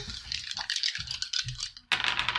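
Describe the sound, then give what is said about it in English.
Three dice clatter and rattle in a quick, continuous tumble for about two seconds as they are rolled for a brawn check, pause briefly, then a sharper burst of clicking follows. Fairly loud, with no voices. “Give me a 3 die brawn check.”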